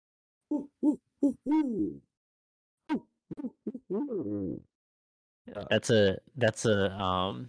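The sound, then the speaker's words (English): A person imitates a barn owl with a series of voiced hoots, three short ones, then a longer wavering run, and finally a louder, breathier burst of hooting calls, all fairly loud. “That was the owl.”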